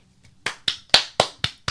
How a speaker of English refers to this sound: We're giving an applaudance to the script writers. Applaudance, yep. That's what that word is? Mm-hmm. Okay, we're done applauding.